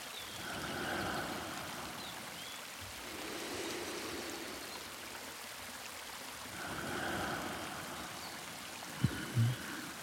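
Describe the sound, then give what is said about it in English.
A steady trickling waterfall splashes continuously, its soft patter of droplets falling into a larger body of water swelling and easing in gentle waves, with faint chirping in the background and a couple of brief knocks near the end. “I listen to the trickling waterfall and its constant patter of droplets falling into the larger body of water.”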